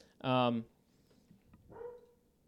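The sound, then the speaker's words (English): A dog on a boat gives one loud bark lasting about half a second, followed a moment later by a quieter, shorter whine-like call against faint background noise. “There's the boat dog.”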